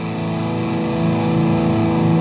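A heavily distorted Gibson Custom Shop 1959 Flying V electric guitar, natural finish with golden hardware, weighing 6.94 pounds, rings out in a loud, sustained chord with thick, buzzing harmonics, steady, with no voices present.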